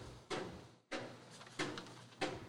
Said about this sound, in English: There's a guy hammering right outside the window. He's going to town.